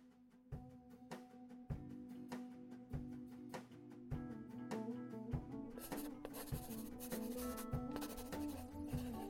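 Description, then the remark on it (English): A pencil scratches across a newspaper crossword in short, steady strokes with soft taps between them, quiet. The scribbling grows busier and brighter toward the end, with no voices. “This paper really must start writing harder crosswords. A five-letter word for forbidden fruit?”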